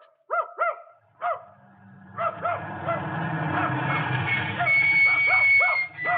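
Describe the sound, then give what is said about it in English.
A dog at a farm barks repeatedly, a few sharp barks at first, then a steadier run of yelps over a continuous low rumbling noise. No one speaks. “Well, now, if you'll call off your dog, ma'am, I'm selling some books here that you might like to see.”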